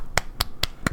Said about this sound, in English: Clapping.